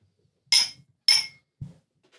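household object, glasses clinking

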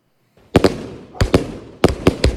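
sound effect, fireworks exploding

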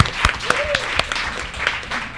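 crowd, audience round of applause

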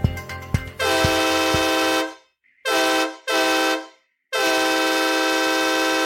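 vehicle, train horn

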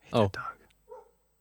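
animal, dog barking

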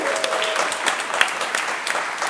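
crowd, audience applause

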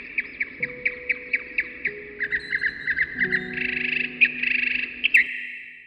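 bird, birds chirping outside

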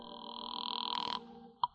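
signal or alarm, telephone call ringing through

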